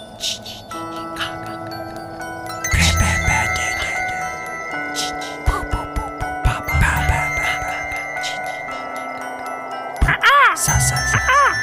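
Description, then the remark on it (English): A bird crows loudly in the woods in several harsh, rising-and-falling calls, with the strongest burst near the end, over a steady background hum and faint chiming tones. “Get out of here, bird. Get the hell out of here.”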